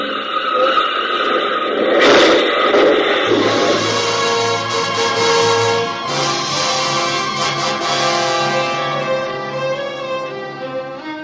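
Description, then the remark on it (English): A car speeds too fast into a turn, ending in a loud, sudden crash about two seconds in, an automobile accident, followed by steady, ringing tones that hold and slowly fade with no talking. “That car better slow down for that turn.”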